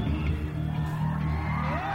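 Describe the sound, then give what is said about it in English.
A crowd cheers and whoops in a steady, dense roar of overlapping voices, holding a constant loudness for the full two seconds, with a rising yell near the end. “Cunts are cheering that.”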